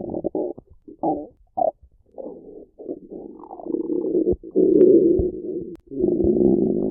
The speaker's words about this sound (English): Because my gut was bubbling already. Yeah. Like, as soon as we, like, walked out the door, it was like...